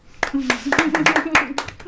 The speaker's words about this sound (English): I'm gonna make it sound like there's more people in here clapping than there. I am so sorry for your ears. Yeah. This is our studio audience right here.